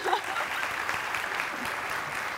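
Steady crowd applause from a studio audience, a dense, even patter of many hands clapping at a constant moderate level with no voices standing out.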